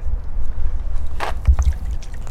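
A wet rope thick with sea squirts is hauled up out of seawater beside a massive warship, with a brief rushing splash, a few dull knocks and soft sloshing over a steady low rumble of water and wind; no one speaks.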